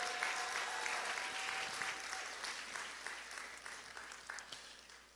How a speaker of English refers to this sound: If there is anybody that knows that it has ended in praise, can you give Jesus a big clap offering this morning?